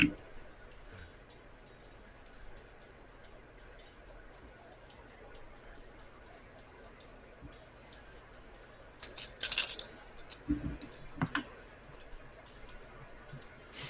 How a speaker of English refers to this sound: Oh, my God. I'm so excited. It's like Christmas. You get to roll all your dice at once.